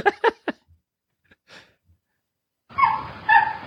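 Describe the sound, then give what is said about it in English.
A chimpanzee sound effect with a dog-like quality: three quick sharp barking calls, a soft breathy huff, then a louder, rougher two-part yelping cry. “There's a chimpanzee. Oh, that sounds more like a dog.”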